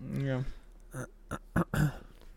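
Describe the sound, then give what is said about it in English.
A brief voiced hum followed by a few short, rough throat-clearing bursts, fairly loud against a quiet background. “No, I was just clearing my throat.”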